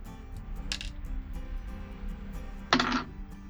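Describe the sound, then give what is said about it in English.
A ten-sided die clatters on a tabletop: a faint brief rattle, then a louder, sharper clink-and-roll that settles quickly, over a low steady hum with no talking. “Roll me a D10”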